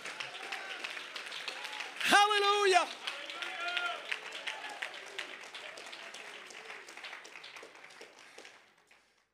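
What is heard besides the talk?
audience clapping hands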